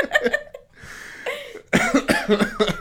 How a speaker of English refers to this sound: You breathe in. You breathe in and then you have a coughing fit for 12 minutes.